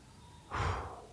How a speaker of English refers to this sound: Don't blow on me. I was trying to do a breathing exercise. I wasn't meaning to blow hot air at your flower petals.